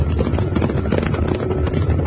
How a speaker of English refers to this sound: It's a stampede. It's Tuttle's cattle, and they're headed right for us.